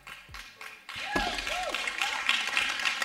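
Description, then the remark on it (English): Scattered audience clapping in the rain: a few sharp claps at first, then a fuller patter of applause mixed with voices in the crowd, moderately loud and continuing to the end. “For those of you who are fighting through to clap at appropriate times, I appreciate that.”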